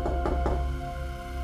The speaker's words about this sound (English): For a while, all was right with the world, until one dreadful night. I was half asleep when I heard a knock at the door.